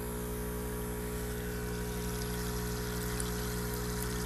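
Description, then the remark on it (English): A steady electrical buzz from an ozonator hums beneath continuous fizzing, bubbling water, both constant with no pauses or speech throughout. “By the way, that buzz, I'm going to bring you right on over here. This is the ozonator. See, there's that, but check out the bubbles.”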